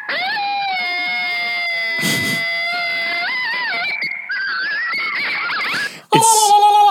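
A coyote pack howls, several high, wavering voices overlapping and sliding in pitch for several seconds, then breaking into a sudden louder burst of sharp yips and calls at the end.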